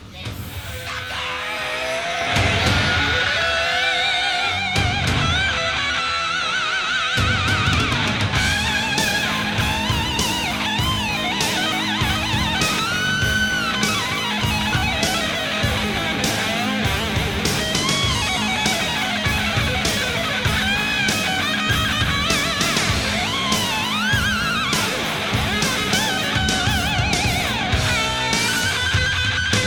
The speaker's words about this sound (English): But it's a song that doesn't really get brought up when you talk about guitar solos. But this guitar solo, it's a screaming guitar solo